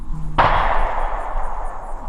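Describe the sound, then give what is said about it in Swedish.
A single pistol shot rings out: one sharp, loud crack that fades over about a second into a lingering tail, with a low steady hum running underneath and no voices. “Innan han riktade sin pistol mot spöket och avfyrade ett skott.”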